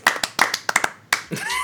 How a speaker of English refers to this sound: So I give him a little round of applause for that.